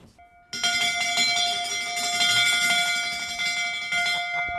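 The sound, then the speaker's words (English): The big brass bell of a restored vintage fire engine clangs loudly, struck in a rapid, steady rhythm so the ringing tones overlap into a continuous, bright peal for about four seconds. “There's so much brass, including, of course, the big brass bell. Can we hear the bell?”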